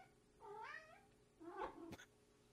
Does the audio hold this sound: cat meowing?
yes